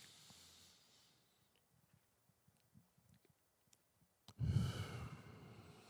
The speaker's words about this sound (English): And I was like, everybody, let's take a deep breath together and see if we wheeze or see if we cough. And I had everybody on Facebook Live just go.